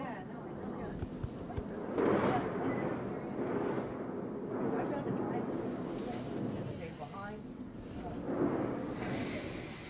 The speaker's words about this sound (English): So I've crawled up into the bottom of the freeway from below up a ladder. I've never been inside a freeway before. You can hear this weird noise of cars.